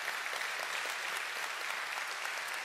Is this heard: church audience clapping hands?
yes